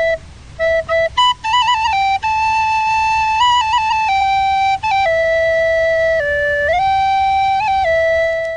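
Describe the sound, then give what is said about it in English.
A solo flute or recorder plays a slow, simple melody of sustained notes that step up and down in pitch, clear, with a few quick notes early on and no talking. “And there's a little flute or recorder music.”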